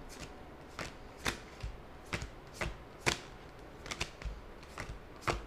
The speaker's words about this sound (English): I love the sound effects of you shuffling the cards.